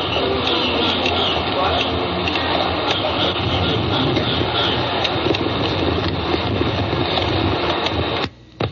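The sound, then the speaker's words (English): Late-night Bangkok street ambience: a dense, unbroken racket of overlapping noise with frogs and birds holds at a steady loud level, with Thai men talking as they walk past faintly woven in, then drops out abruptly just before the end. “But that's the sound of nighttime, deep night, in Bangkok.”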